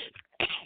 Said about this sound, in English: Oh, I had to sneeze. I couldn't hold it.